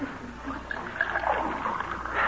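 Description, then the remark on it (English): Water is poured into a glass in a steady stream for about two seconds, a gurgling splash whose pitch rises slightly as the glass fills, with no voices. “Long as I'm here, though, you might give me a glass of water.”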